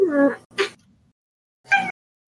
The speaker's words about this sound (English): What is that noise? It's the cat being weird. She's trying to step on my crap and now she's growling at me.